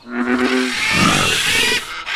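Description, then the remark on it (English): A frog in a tropical rainforest croaks loudly in one long, harsh, rasping call lasting about two seconds. It opens with a low buzzing tone and turns into a grating, sawing rattle, with no talking. “I can croak as loud as I want, as much as I want.”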